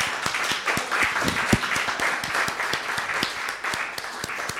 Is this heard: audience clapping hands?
yes